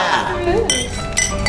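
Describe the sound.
Glasses clink together in a toast celebrating the launch of Dramaticus, two bright ringing chimes about half a second apart, with a murmur of voices underneath.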